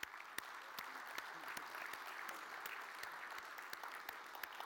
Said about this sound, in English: And like we talked before, kind of a new tradition for us, I would like to encourage you to applaud and to give thanks for what God just did. So, if you would.